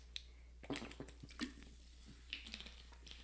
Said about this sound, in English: I'm going to take another drink of water.